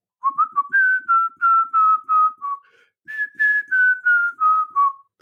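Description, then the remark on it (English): A cheerful whistled theme tune of the sitcom Some Mothers Do Have 'Em, two clear melodic phrases of short, bouncing notes separated by a brief pause, whistled alone with no talking. “You know, I just have to hear that whistling and I've got a mixture of excitement that there's going to be a funny programme on, but also starting to cringe because I used to feel for Frank Spencer”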